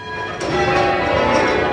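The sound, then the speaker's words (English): A large church tower bell rings with a struck onset, its layered metallic tones humming and sustaining steadily, moderately loud, with no one talking. “We'll go out to the volunteers reading the inscriptions on each bell.”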